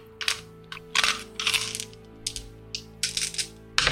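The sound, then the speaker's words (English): Dice rolled for a persuasion check clatter and tumble across a hard surface in a series of sharp, irregular bursts, with a steady low musical drone humming underneath and no one speaking. “I'm going to roll a persuasion check for Nurse Coldhands”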